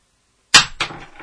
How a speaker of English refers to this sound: See how that coin did it? It like hit and then did another fucking backwards flip thing.